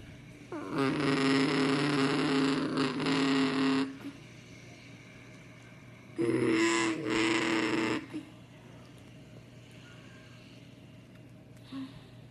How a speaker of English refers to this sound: Pace truck is working his way on back down pit road.